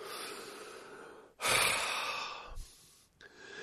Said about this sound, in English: And I know I shouldn't be doing this while I'm coughing. I apologize, but I have no cough filter. I'm not going to edit out each fucking cough.